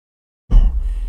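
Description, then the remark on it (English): A person imitates a horse breathing around the bit in its mouth as it slows to a slow pace after a full-speed ride, a sudden low, fluttering snort-like exhale that starts abruptly and sustains briefly, fairly loud with no talking. “That breathing around the bit in his mouth, kind of as he comes to it with a”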